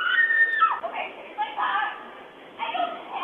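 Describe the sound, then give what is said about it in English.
Desperate, high-pitched screams rise and fall in several strained bursts, sounding tinny and muffled as picked up by a doorbell camera microphone near Lake Nokomis on an afternoon, with no clear words. “A nearby doorbell camera captured the desperate cries, tearing through what was a quiet afternoon near Lake Nokomis.”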